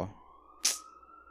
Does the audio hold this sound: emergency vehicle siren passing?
yes